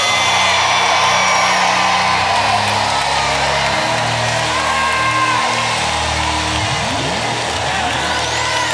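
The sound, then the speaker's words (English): An audience at a worship service screams and cheers loudly for the whole stretch, a dense, sustained roar of voices with scattered whoops rising above it and no break in the noise. “I'm telling y'all, if y'all don't scream over this, he gonna perform in your body.”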